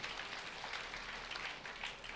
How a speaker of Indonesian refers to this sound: Tepuk tangan bagi Tuhan, saudara.